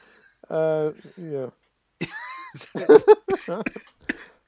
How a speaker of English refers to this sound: Yeah. Oh. Ooh, coughing. Coughing has returned.